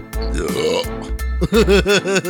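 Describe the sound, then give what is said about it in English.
A loud burp rumbles out in a long, gravelly stretch, then breaks into a few shorter croaking belches in quick succession, with no talking. “I was going to do a sound effect, but it came out of my mouth.”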